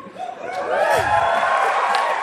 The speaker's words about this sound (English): It's still worthy of an applause.